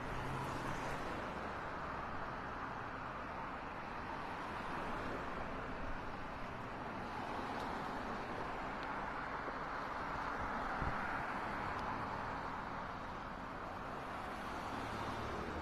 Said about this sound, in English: These cars entering right down from Parkview onto Route 10.